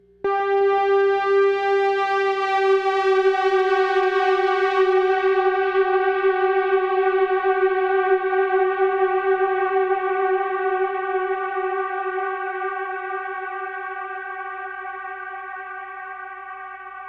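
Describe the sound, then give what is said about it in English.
A reverb unit caught in mid-range feedback oscillation, its bass fader pulled down so only the mids oscillate: a steady, buzzy harmonic drone that starts abruptly, holds loud and unwavering for many seconds, then gradually softens toward the end. No voices. “Now let's do the same thing, but I'm going to pull the bass fader down and just let the mids oscillate.”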